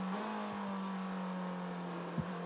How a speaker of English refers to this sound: the number 52 car that goes past Loris Spinelli is now down in fourth position